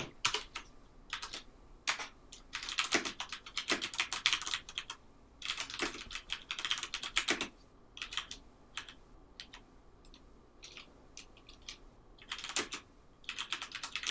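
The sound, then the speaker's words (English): Rapid, irregular clicks of typing on an Apple laptop's new second-generation butterfly keyboard, fairly crisp, in bursts with short pauses over a quiet background, no voices. “How's this new second generation butterfly keyed keyboard?”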